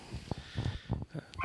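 A female pet dog barks several times in quick, uneven succession, short sharp yaps that sound somewhat faint, with no talking over them.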